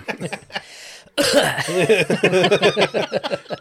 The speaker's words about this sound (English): For those of you that don't know, that cough means it's an edit point. I'll probably leave that one in just for the sake of it, because why not?